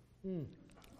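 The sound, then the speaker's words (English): A single swallow as a preacher takes a quick swig of water during a sermon, a short throaty gulp with a brief wet, squishy quality, then quiet. “Need a swig of water there, all right?”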